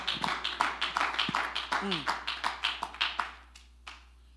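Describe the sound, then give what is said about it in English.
Worshippers clap their hands to the Lord in a fast, steady rhythm, loud, with a brief voice calling out partway through, before the clapping thins out and stops. “Let's clap our hands to Him right now.”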